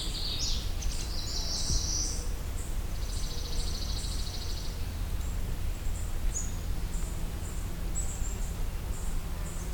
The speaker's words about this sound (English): The dark-eyed Junco.